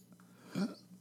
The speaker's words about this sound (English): Yeah, no, sorry. I burped. Burped a little bit right there.